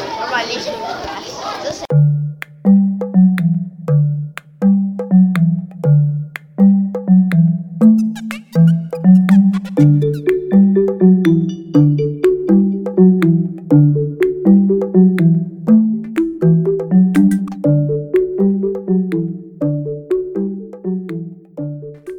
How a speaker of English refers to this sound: All right, well, as you can hear, the bell rang, so we will hopefully come back with the next segment in the next period.